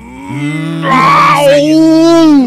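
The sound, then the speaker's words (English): A soundboard growl-button sound effect plays alone: a loud, drawn-out, low and raspy rumble with a brief rising swell in the middle, sounding almost like a bellowing moo, lasting a couple of seconds. “What a growl button, Law.”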